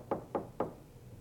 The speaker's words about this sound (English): Yeah, so they don't even have door chimes or anything. You got to go open the door. Somebody knocks.